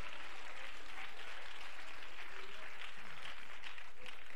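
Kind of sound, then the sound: crowd, audience clapping hands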